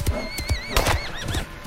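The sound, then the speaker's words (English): Shrill, quavering horse whinnies rise and fall in quick succession, sounding agitated as a bear runs at the horses, with heavy thumping hoofbeats and thuds underneath. “The bear ran for the horses after knocking me aside.”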